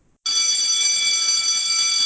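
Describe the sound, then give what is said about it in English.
A loud electric bell starts abruptly and rings continuously without a break, a bright, shrill, steady clangor, with no one speaking. “Well, there's the bell. The show's over.”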